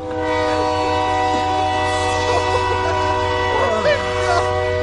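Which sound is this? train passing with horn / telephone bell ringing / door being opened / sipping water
train passing with horn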